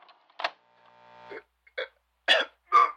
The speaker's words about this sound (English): Ooh, sounds like you got too close to a creeping wood tree. Excuse me? Your cough. Sounds like creeping wood.